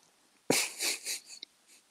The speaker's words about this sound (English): Right, I'm just going to have a cough because I can't breathe.